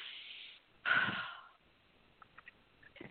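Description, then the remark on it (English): A breathy sniff in through the nose, then a louder, longer blow out, followed by quiet with a few faint small noises. No one speaks. “Sniff and blow.”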